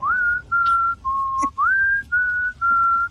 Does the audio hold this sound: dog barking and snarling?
no